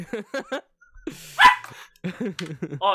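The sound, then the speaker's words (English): A single sharp bark from the dog Otto bursts out mid-clip, fairly loud, with people talking before and after it. “Yes, special guest, Puppy Dog.”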